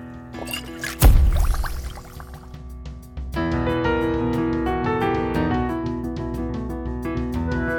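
A short liquid slosh and gulp of someone drinking a potion brought back from Skyrim, with a sharp splash near the start, then a steady musical passage takes over. No one speaks.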